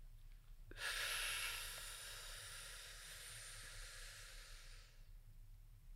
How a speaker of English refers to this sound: So the 5 second inhale, so again for the camera, it looks like this. So I would do it with my eyes closed.